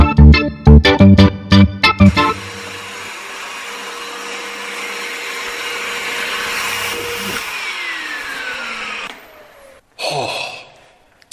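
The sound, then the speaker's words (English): A vacuum cleaner hoovering a dusty place drones loudly and steadily for several seconds, its motor whine then sliding down in pitch as it powers off, after a few quick rhythmic thumps at the start. “It's not half dusty in here, you know. When did the last hoover it out?”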